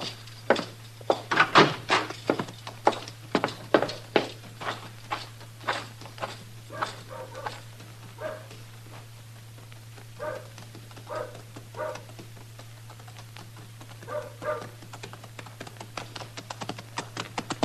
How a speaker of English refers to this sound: Ellen Henry's riding up the street, leading my horse.